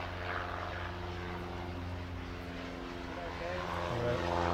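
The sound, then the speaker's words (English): A propeller plane drones steadily overhead, its engine hum loud and continuous, shifting pitch slightly near the end as it passes by. “Oh, hang on, plane coming.”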